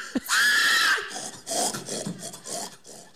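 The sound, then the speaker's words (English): A person imitates a pig call: a loud, raspy, high-pitched squeal lasting about a second, followed by a series of shorter, rougher snorting grunts in an uneven rhythm. “Do you want to try and do a pig call?”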